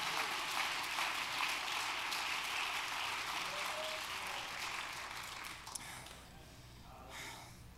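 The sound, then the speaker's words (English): An audience claps to thank God for the church, a dense, continuous wash of hand claps that holds for several seconds before thinning out, with a scattered clap or two near the end. “Somebody ought to clap your hands right now and thank God for the church.”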